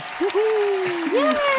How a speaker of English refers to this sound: you don't have to clap. I can add in the clap later. I just wanted to clap for no reason. You don't have to clap, you know.